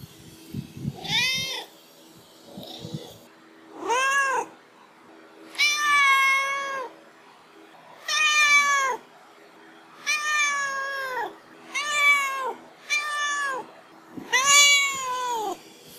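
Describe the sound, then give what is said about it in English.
A cat named Duarte yowls over and over, about eight or nine drawn-out, wavering pained cries with short pauses between them, loud, with no talking. “I feel like we've spent an hour talking about this book, and Duarte just really summed it all up in that pained yowl, I think.”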